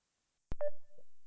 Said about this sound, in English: That's a different ringtone.